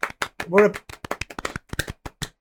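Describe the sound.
Rapid, uneven hand clapping runs for a couple of seconds as sharp, crisp slaps, briefly joined early on by a short voiced cheer or laugh.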